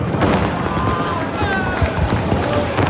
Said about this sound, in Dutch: Zo komen de beide Ferraris aan onder het geluid van vuurwerk bij het podium.